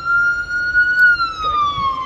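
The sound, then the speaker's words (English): A loud police car siren wails steadily as the vehicle passes by, its pitch sliding lower as it moves away, over a low rumble of road traffic. “Oh god, dude, I thought we were gonna witness another car chase.”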